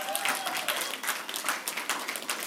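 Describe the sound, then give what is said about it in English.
A crowd breaks into steady applause, many hands clapping in a dense, crackling patter that holds at an even level for a couple of seconds. “You can clap for that.”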